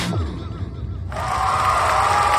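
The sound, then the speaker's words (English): An applause sound effect: a low rumbling murmur gives way about halfway through to a dense, steady wash of applause that holds at a fairly loud level to the end, with no speech over it. “Dude, I love that new applause.”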